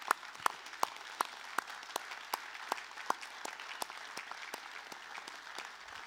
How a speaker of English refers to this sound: You remember what we do whenever God does something great? We give him the thanks and all the praise. So would you please stand and let's applaud for what God just did.